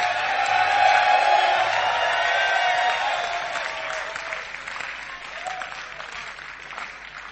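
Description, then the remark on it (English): A large church audience claps loudly and continuously, with scattered shouts and voices mixed in; the dense applause holds steady before easing slightly toward the end. “You are refreshing me as you are clapping.”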